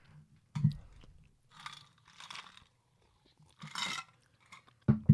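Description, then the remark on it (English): Someone chewing and biting into Hershey's Special Dark Chocolate, with a few scattered crunchy bursts and soft low thuds between quiet pauses, no talking. “That was Hershey's Special Dark Chocolate for sure.”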